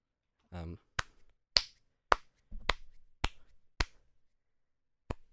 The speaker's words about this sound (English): Guess how stoked you are right now by number of claps.